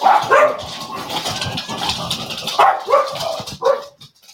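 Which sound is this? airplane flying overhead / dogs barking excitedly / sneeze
dogs barking excitedly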